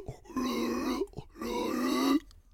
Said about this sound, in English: Recording a podcast and he's breathing heavy and shit. If you ever been around pugs, God, they breathe. Like, they, all it is breathing.